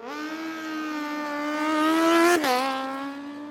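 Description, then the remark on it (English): A speedway motorcycle engine revs loudly, its whine climbing steadily in pitch, dipping sharply for a moment near the end, then surging on again. “So in April of 1938, Henderson and Stewart came up with a new opponent for the cheetahs to race: motorcycles.”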